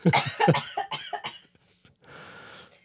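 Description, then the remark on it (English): A burst of harsh coughs in quick succession from post-nasal drip, fading into a brief pause and then a soft, breathy rasp like a throat recovering. “I was drinking water to prevent from coughing.”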